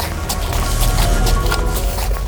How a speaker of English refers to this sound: The horse begins to trample through a small patch of pumpkins rotten from the base to the roots, binding into the ground.